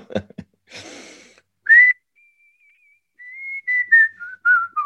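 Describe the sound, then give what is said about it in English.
A person whistles a short tune, clear pure notes stepping downward in a simple melody after a quick intake of breath, with no talking. “Give us a little blast of the whistle.”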